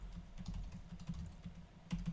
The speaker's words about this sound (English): What's the typing? I'm going to one of my sites right now, actually.